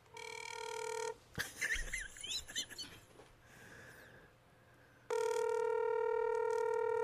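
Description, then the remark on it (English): A phone line rings out with a steady electronic ringback tone on a call to a man's cell phone, heard twice with a gap between. A burst of high, chirpy warbling noises fills the pause. No one speaks. “You're calling his cell phone?”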